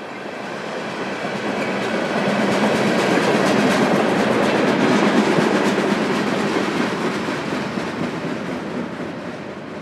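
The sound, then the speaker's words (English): A freight train with oil tanker cars rolls past, a steady heavy rumble with faint rhythmic wheel clatter that swells through the middle and eases slightly toward the end, with no voices. “There's an oil tanker.”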